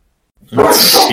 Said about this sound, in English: Oh, shit, set off the dog. Dog bomb.